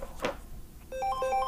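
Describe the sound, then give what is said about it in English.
A phone alarm going off in the morning as a reminder to start driving to work starts up after a brief soft thump: a bright electronic melody that alternates between two pitches in quick, repeating beeps, steady and fairly loud, with no talking. “Sorry, guys, my alarms went off letting me know I got to get in that car to start driving to go to work.”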